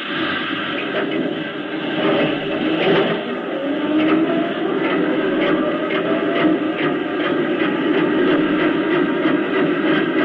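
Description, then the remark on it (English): Steam printing presses run steadily at full speed in a dense mechanical roar, with rapid rhythmic clacking and thumping that repeats evenly throughout. “Then let your steam presses roll.”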